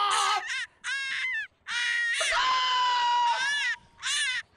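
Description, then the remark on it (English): A rabbit screaming: a series of loud, shrill, piercing cries, short bursts followed by one long drawn-out wail and a final squeal, with no talking. “It says rabbit screams.”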